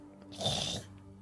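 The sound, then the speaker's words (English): A voice imitates a warg, a wolf-like beast, sniffing: one breathy, snorting burst lasting about half a second, moderately loud, with quiet background before and after. “And it's like sniffing and sniffing.”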